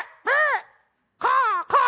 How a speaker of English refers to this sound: And then you get there and you find out that roosting in your tree are a flock of annoying birds. And they're squawking the whole time.